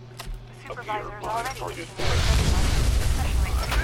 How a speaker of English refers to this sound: Okay, well, there was definitely a fiery explosion for some reason.